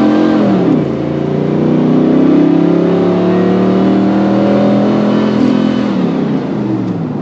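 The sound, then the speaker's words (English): An F-body car's engine revs up and accelerates, its pitch climbing then holding at a steady loud roar before easing off near the end, with no talking. “93 to 96 F-body, if you do the 98 to 02 upgrade, you'll like it.”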